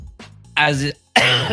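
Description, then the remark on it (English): A loud throat clearing followed by a harsh cough from a person with a lingering cough, two raspy bursts separated by a short pause, with a faint low grumble just before them. “I'm also coughing up a lung as I've had a lingering cough.”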